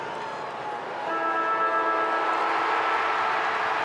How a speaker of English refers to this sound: The clock ticking. The siren will sound.